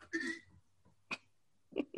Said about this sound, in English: Burp. A burp. That's how you get it out.